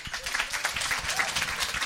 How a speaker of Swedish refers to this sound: Och de ska ha en applåd nu.